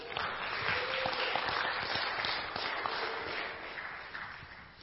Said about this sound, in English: Well, let's give the Lord a cheer.